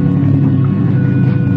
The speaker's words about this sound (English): So we head for the beach, leaving Milani standing there on the bluff. The boat is coming in at us now.